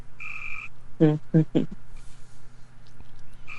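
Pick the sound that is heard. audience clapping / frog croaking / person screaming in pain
frog croaking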